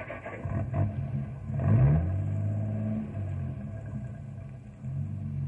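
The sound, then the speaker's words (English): A truck engine rumbles as the truck backs up, its pitch climbing in a quick rev before settling into a steady, throaty idle that swells again near the end. No voices. “put the brakes on. You're backing up.”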